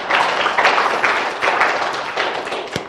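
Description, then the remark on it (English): A crowd applauds the tech crew steadily for a few seconds, many hands clapping together into a dense, even patter that stays loud throughout, with one sharper thump near the end. “Will you just give a big round of applause to our tech crew?”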